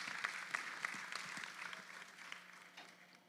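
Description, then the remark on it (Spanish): An audience applauds with steady, dense clapping for about three seconds, a few sharper claps standing out early before it gradually thins and softens toward the end. “Así que deseen ustedes un aplauso también.”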